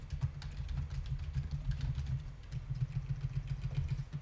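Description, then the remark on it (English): Rapid, uneven keyboard typing clicks away steadily for a few seconds, fairly quiet, over a low constant hum with no one speaking. “Are you typing that into Google as if it were a riddle?”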